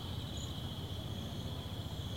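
A steady, high-pitched chorus of crickets chirping continuously, fairly quiet and unchanging, with no voices and only a faint low background hum beneath.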